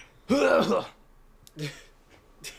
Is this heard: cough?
yes